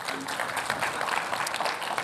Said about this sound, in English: So yes, we are going to give him a round of applause again.